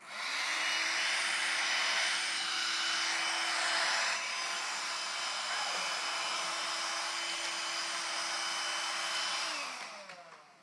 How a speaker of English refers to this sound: That was fun. I wanted to do that. Okay, and why did I bring the hairdryer? That's for Gideon to use when his hair's messed up.